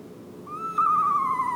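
An owl hoots once in a single long, drawn-out call that swells in strength and drifts slightly lower in pitch, heard clearly and alone over a faint background hush.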